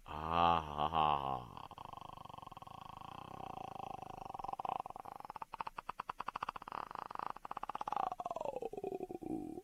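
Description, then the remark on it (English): A human voice imitates a lion's roar with a throaty growl, made while trying to clear the throat. It opens with a short, strained vocal rise, then settles into a long, rattling, pulsing rumble that trails off at the end. “I've been working on that sound to try to clear my throat.”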